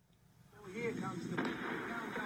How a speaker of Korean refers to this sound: 갱도 입구가 폭발음과 함께 무너져 내리고 흙먼지가 산사락을 뒤덮습니다. 먼지가 걷히자 건물 잔해와 함께 돌무더기에 파묻힌 갱도 입구 모습이 드러납니다. 2018년 5월 24일 북한은 핵 모라토리엄을 선언하며 전 세계가 보는 앞에서 풍계리 핵실험장을 폭파했습니다.